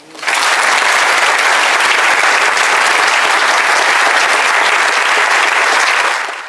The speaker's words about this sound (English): Keep clapping.